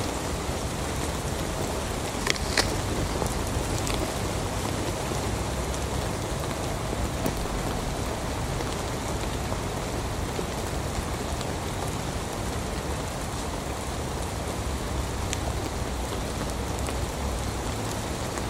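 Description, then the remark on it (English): Steady rain pattering on a hard surface, a dense, even hiss of drops with a few sharper splashes near the start, continuing unbroken with no voices. “I love the sound of rain.”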